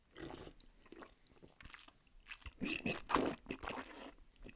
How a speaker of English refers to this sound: Gosh, what's happening? Are you? Sounds like you're shampooing a New England sheepdog. I'm just swirling the wine in my mouth.